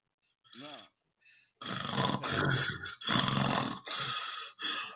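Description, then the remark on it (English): Heavy, loud breathing, a series of long rasping, snorting breaths with brief pauses between them, after a short throaty sound at the start. “And you breathing like a fat man.”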